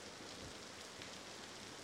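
Steady rain falls at night in an even, continuous hiss with faint scattered patter, soft and unbroken throughout, and no voices.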